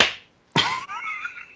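A person slaps their own face with a hand a couple of times, sharp slaps, the second one crisp and loud, followed by a brief lingering ring as it fades.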